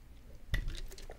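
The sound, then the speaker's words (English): A quick swig of colored water: one soft wet gulp with a low thump, followed by faint liquid clicks and mouth sounds, all fairly quiet and with no talking. “I need a little swig of this colored water.”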